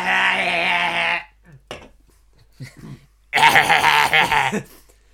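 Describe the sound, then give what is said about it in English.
A person imitates a baby yak with two drawn-out, bleating vocal cries separated by a short pause filled with faint clicks and breathy noises, the second cry wavering and pulsing. “Let me just do an impression of a baby yak and that'll clear my throat up.”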